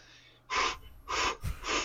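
Heavy, labored, pained breathing from a person who has just hit a knee on a desk: three strong, harsh breaths at a steady pace, each a loud rasping rush of air with short pauses between, no talking.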